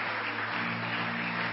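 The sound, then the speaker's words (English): A church audience applauding steadily for people coming forward to the front, in a dense, continuous wash of clapping, with a low sustained hum underneath and no voices standing out. “Oh, clap for them as they come.”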